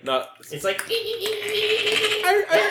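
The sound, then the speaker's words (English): A person imitates a dolphin, making a rapid stream of crackling clicks over a thin, squeaky vocal tone that carries on for a few seconds. “It's a dolphin. It's like clicking.”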